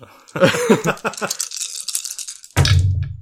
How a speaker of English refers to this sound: Wait, I'm missing several dice. I don't know why I thought I was ready to roll.